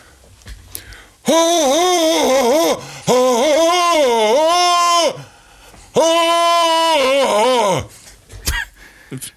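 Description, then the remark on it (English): A man belts out a Tarzan yell in three loud, drawn-out bursts, his voice warbling up and down in a yodel-like jungle call, with short pauses between each cry. “can you please do your famous Tarzan yell?”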